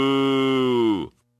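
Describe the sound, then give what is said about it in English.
A single long, low moo from an old, crying cow in a barn holds a steady buzzing pitch for about a second, then slides down and cuts off, with no other sounds around it. “From behind the barn, he heard a terrible sound. Moo!”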